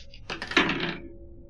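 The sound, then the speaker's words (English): Dice are rolled across a tabletop for an unarmed roll in a game: a short clatter tumbling and bouncing, several quick clicks settling into a brief ringing rattle, fairly loud, with no one talking. “Okay, give me that roll.”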